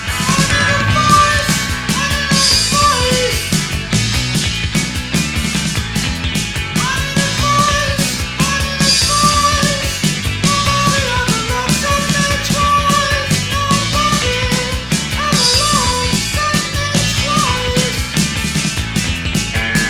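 A driving psychobilly-style rock song with a fast, bouncing rhythm section and a high, falsetto-like lead vocal wailing over steady drums and guitar, playing loudly throughout.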